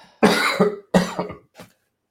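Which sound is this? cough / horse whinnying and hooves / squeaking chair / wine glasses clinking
cough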